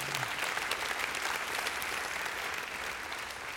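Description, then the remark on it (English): A sustained burst of applause from a large audience after hearing that a Bible app has surpassed 95 million devices, many hands clapping densely and evenly at a steady loudness throughout, with no voices standing out. “Yeah, you can clap if you want.”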